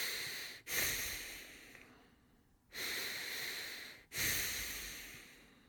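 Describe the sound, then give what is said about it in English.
Loud, rapid breathing through the nose instead of the mouth while stretching in a lunge: three long, airy, hissing breaths in a steady rhythm, each starting abruptly, with brief quiet gaps between them and no talking. “And then all of a sudden I accelerated the breathing through my nose, you know, stopped breathing through my mouth.”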